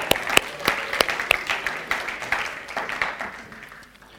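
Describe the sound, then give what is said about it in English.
An audience breaks into applause, a dense patter of many hands clapping with a few sharp, prominent claps early on, steadily thinning and fading away toward the end. “You need to give them a clap, eh?”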